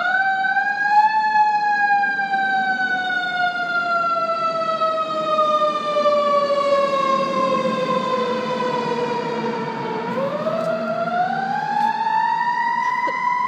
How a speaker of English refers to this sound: We may have a fire truck going past us, so wait a second.